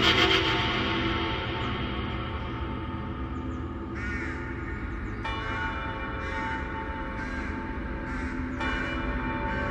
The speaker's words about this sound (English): I stared across the desert at Pleasanton. In the distance, I heard the faint toll of wedding bells ringing out across the sand.